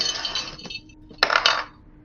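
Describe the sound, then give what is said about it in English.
Dice, dropped while being fetched for a roll, clatter across a hard surface, a bright rattling burst followed by a second louder cluster of sharp clicks before settling into quiet. “Let me find my dice.”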